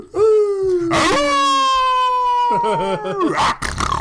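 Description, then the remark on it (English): A person imitates a werewolf with a loud, drawn-out vocal growl that rises in pitch, holds steady, then breaks into a wavering, warbling howl before trailing off. “That was a werewolf.”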